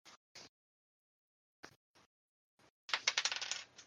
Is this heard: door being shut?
no